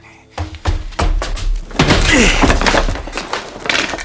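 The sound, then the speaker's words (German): A door in a basement is kicked in: a few heavy thuds build to a loud, splintering crash, followed by a sustained rattle of debris, forceful. “Achtung, geh von der Tür weg. Ich trete sie ein.”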